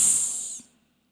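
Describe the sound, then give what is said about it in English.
A voice imitates a snake's hiss with a single drawn-out, sharp "sss" lasting under a second, sounding the letter S for the word snake in a lesson. It is bright and steady, then trails off into silence. “Snake starts with the letter S.”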